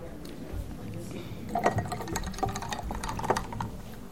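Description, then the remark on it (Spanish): Water pours into a glass, a steady liquid splash punctuated by a few light clinks of glass, with faint murmuring voices in the background. “¿qué sala es esta agua? Si quiero un poquito más. Toma.”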